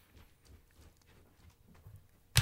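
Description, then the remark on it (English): A female dog, locked downstairs, paws and scrabbles at the stairs trying to get upstairs, making soft, irregular low thumps and light scratches, ending in one sudden loud knock. No voices. “My dog is trying to get upstairs and I locked her down here.”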